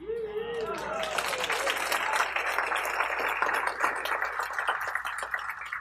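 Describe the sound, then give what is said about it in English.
A brief voice at the start gives way to a sustained burst of audience clapping and applause, dense and steady, fairly loud and continuing for several seconds. “Clap all you want, I wasn't very successful.”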